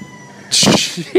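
A protected rooster crows loudly, a short harsh burst followed by a second brief call, with no other sounds around it.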